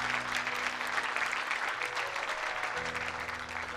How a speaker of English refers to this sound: Give these people a big round of applause. Amen.